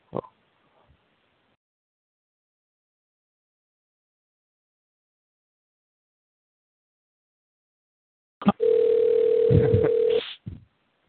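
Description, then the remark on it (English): A brief click, then long silence before a steady telephone dial tone hums loudly for about two seconds after a phone call was disconnected, then cuts off abruptly. No one speaks. “Yeah, we got disconnected or something there.”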